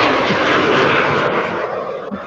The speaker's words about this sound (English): Hold on, we got jet.